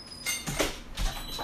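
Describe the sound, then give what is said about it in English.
A door opens to let a dog in, with a soft scraping rush and a faint high squeak, followed by a second muffled shuffle of movement; no one speaks. “I have to let the dog in because he's going to just continue to paw at the door.”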